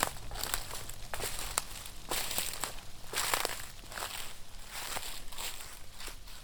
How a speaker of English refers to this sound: Comforted in the sounds of the heavy lumbering footsteps clearly moving away from him